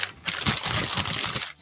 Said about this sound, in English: You're trying to record your wrapping paper? Yes. Oh, it's a box!